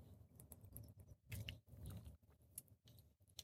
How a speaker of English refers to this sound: I'm going to get another quick sip of water. Hang on, guys.